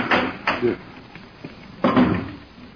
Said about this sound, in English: just put it in the clothes closet and close the door. That should muffle it.